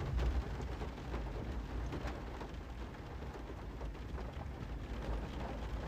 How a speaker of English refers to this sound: Listen up. You hear that? That's rain. That's adverse weather.